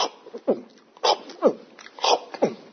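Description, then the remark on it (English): A voice imitates a teenage boy gulping food down whole without chewing: about six quick, throaty swallowing noises in a fast, steady rhythm, moderately loud, with no talking. “All right, no chewing, no digestion, just swallows it whole.”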